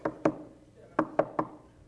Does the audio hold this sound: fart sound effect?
no